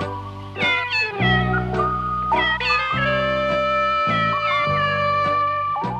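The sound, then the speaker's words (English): Cat meows pitch-shifted to fit the notes of a song, strung together into a melody over a steady low musical backing, loud and continuous with a new meow landing every second or so. “they took the various sounds of the cat meowing and then like pitch shifted it to fit the notes of the song”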